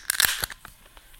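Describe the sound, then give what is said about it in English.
A can of Red Bud Cucumber, a 4.9% ABV Berliner Weisse from Independence Brewing Company, is cracked open: a sharp, bright pop with a quick burst of hiss, then a few faint clicks and rustles trailing off. No one speaks. “Well, let's pour up, man. Let's open this one.”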